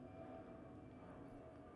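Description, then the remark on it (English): A large jumbo jet roars overhead, a steady, heavy low rumble with a faint whining tone on top that holds at constant loudness throughout, with no voices. “Well, that's a big one. That's Jumbo Jet.”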